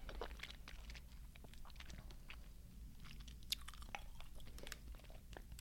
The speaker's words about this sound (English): I chewed it. What flavor is this? Gotta be lime. Mm-hmm. Oh, it's so hard to eat.